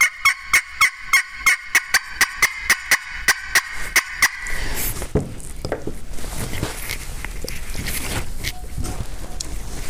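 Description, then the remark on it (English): A turkey mouth call imitates an excited hen turkey: a steady run of about sixteen raspy, high yelps, then sharper, irregular cutting clucks that sound fainter and more scattered. “And a lot of times I'll start cutting, maybe when she's yelping, you know, she's just looking.”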